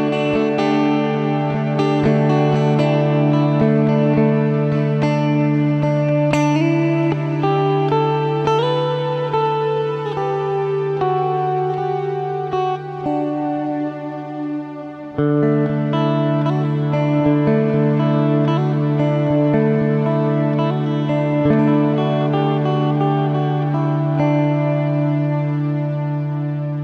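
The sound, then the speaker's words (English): A low, cello-like tone hums steadily beneath layered, processed harmonics, washed in reverb and effects. It briefly dips near the middle before swelling again, with no voices. “Ooh, there's even a little bit of, you hear that kind of cello sound fading out there in the reverb?”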